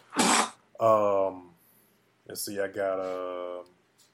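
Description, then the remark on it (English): Two loud sneezes a couple of seconds apart, each a sharp breathy burst trailing into a drawn-out voiced sound. “Bless you, man.”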